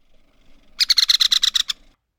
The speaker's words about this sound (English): Now, let's play all three woodpeckers' rattling calls back to back. First, Downy. Then, Harry. Then, American three-toed woodpecker.